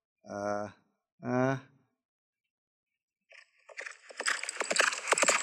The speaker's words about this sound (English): The horse's hooves grow louder.